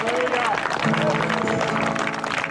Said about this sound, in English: Can we give Jesus one big, huge hand clap of praise?